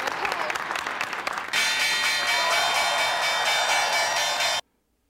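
Applause and cheering, then the New York Stock Exchange opening bell, pressed by Carrie Bradshaw to open trading as the New York Star newspaper goes public, rings loud and continuous for about three seconds over the clapping before cutting off abruptly into silence.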